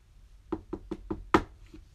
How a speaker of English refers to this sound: That's when they heard a knock.